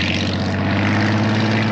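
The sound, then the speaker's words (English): A vintage wooden Chris-Craft motorboat's engine runs fast and steady, a loud, continuous drone with a strong low hum and a buzzing upper edge, with no talking. “So, how fast did this old tub go anyway? a vintage Chris Craft boat, got the star treatment in the 1981 film On Golden Pond.”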